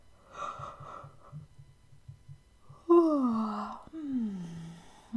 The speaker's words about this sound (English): Well, anything that you would do when you are really sleepy will be helpful. You could try fake yawning a few times in a row.